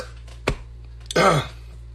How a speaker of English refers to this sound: I have the hiccups. Oh, good God.